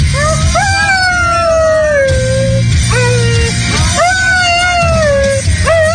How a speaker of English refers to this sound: Dumb dog doesn't even know the words. It's kind of like me when I sing along.